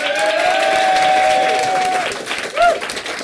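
An audience at a live show applauds a participant at the end of a section in a dense, steady wash of clapping, with whoops and a sustained cheer rising over it before the noise thins out toward the end.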